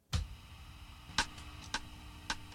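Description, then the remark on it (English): Sharp, bright metronome clicks sound on their own, four ticks in all, the last three falling in a steady, moderately quick beat after a longer gap following the first. “Metronome again.”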